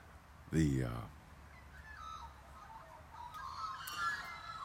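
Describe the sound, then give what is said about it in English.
Birds calling outdoors: a loud, strident call bursts out near the start, then fainter scattered chirps and whistles continue over a low, steady background rumble. “God, listen to those birds.”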